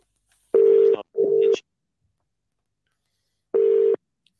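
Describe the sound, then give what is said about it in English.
A telephone ringback tone on an outgoing call: two short bursts close together, a pause, then another burst, steady and fairly loud with no voices. “Oh, it's ringing.”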